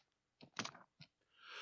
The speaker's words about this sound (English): Your sneeze is coming.